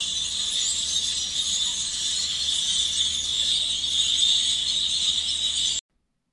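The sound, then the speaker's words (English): A huge flock of about 100 grackles calls all at once, a dense, shrill wall of chattering and squeaking that holds steady and loud for about six seconds before cutting off abruptly. “And this is what 100 grackles sound like.”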